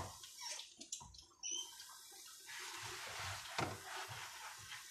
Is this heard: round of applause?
no